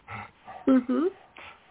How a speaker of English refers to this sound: I hope that's a dog heavy breathing. It is my dog. Sorry. He just walks behind me. He's old and breathes heavy, so my apologies.